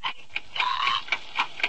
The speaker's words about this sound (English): What's that ticking?